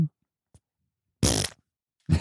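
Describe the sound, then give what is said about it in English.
A fart wand, pointed by a man at himself, blares a loud, raspy fart noise for about a quarter second, then a second short burst cuts in near the end, both sharp with quiet gaps around them. “He pointed one of the fart wands at himself.”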